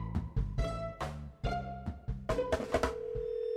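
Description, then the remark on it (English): A quick run of touch-tone beeps as a phone number is dialed to call a congressional reporter at the Capitol, short distinct tones in a steady rhythm, settling into a sustained tone at the end. No one speaks. “I picked up the phone and called congressional reporter Mike DeBonis over at the Capitol”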